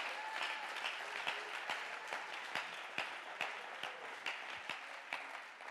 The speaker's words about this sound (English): Oh, let's clap our hands one more time and give him praise.